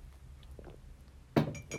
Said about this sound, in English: Excuse me, I'm going to have a little sip of my turmeric and ginger tea.